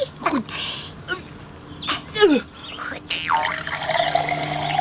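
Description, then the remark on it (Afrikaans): Water is poured into a container for someone to drink, a steady stream with a rising pitch as it fills, after a few creaks and clinks of handling at the start. “Staan op jou handjes, dan sal ek vir jou water aangee om te drink.”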